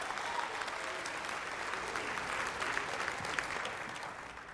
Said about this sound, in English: Hallelujah. Give God a hand clap of praise before you're seated this morning.